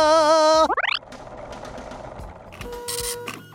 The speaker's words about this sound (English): because I hear that familiar clinking whirl of the riddle machine firing up.